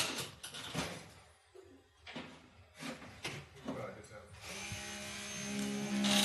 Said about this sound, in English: Yeah, this is them breaking down the door because he wouldn't let him in. Dang.